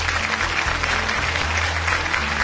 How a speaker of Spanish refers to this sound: Ese, bueno, ya estuvo bien, gracias. Estuvo medio aguado el aplauso.